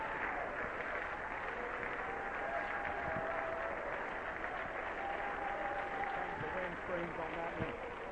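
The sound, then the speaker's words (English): An audience claps steadily for several seconds, a dense, even wash of hand claps that never lets up, with voices faintly mixed in underneath. “Let's clap our hands again to him.”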